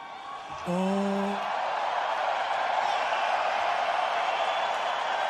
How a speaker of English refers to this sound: So up in Edmonton, his mic cut out, and up in Canada, the crowd in Canada took over the national anthem.